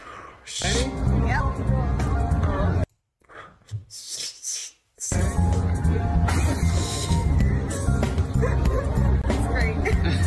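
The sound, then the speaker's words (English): A man barks like a dog, his voice imitating loud repeated woofs over a dense, loud background that briefly drops out midway before returning. “I don't like the dog guy.”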